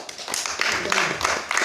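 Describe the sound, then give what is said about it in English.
An audience at a Bible study claps together for a woman who has just read a Bible passage, a dense, steady patter of many overlapping hand claps, fairly loud and continuous, with a brief swell of sharper claps partway through. “Let's clap for her.”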